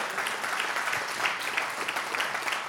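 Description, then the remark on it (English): A church audience applauds together during a service, a steady wash of many hands clapping at once, dense and even in loudness throughout with no voices standing out. “Come on, clap today if you want to be that kind of church.”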